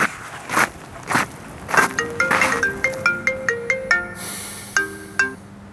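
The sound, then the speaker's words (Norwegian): A mobile phone ringtone plays a quick melody of bright electronic notes, clear, after a few soft thuds and shuffling sounds, ending with two separate chimes. “Klokka 12 kan det være over, og det eneste jeg har gjort er å vente på en telefon eller en melding.”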